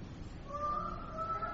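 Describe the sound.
A group of voices imitates a chicken, a sustained, squawking bawk starting just under a second in and holding steady over room noise at moderate volume.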